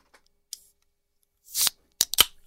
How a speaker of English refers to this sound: You're that guy in the theater who cracks open the can. You can hear it from like all the way around the whole theater.